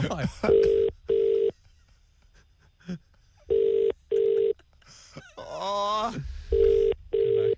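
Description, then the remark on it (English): A phone call to the caller's mother rings out with a repeating double-burst ringback tone, three pairs of beeps separated by pauses, while a voice briefly speaks between the rings. “The timer's going to start as soon as Jenny answers the phone.”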